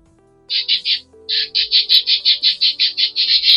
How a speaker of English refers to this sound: And those are my birds. Say hello.